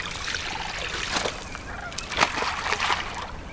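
A few sloshing splashes of a plankton net tossed into the Sacramento River to collect samples, spaced irregularly over steady outdoor background noise, with geese honking faintly.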